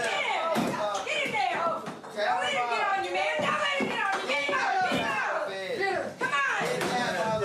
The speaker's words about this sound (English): Basically, it's a bunch of drunk dudes, and they're fighting a chair. They're trying to beat up a chair, and they're getting cheered on.